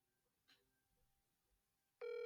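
After a quiet stretch with a faint click, a loud electronic telephone ring tone of an outgoing call cuts in abruptly near the end, steady and buzzy.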